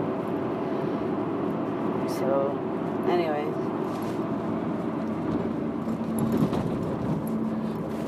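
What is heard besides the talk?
car interior driving noise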